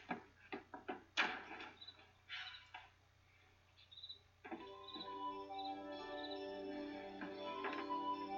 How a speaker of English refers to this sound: we see from inside that Jesse does open the door